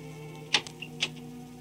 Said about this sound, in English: It's 40 minutes later. At Andrew's apartment, the buzzer is ringing wildly. Half asleep, the candidate for mayor staggers to the door.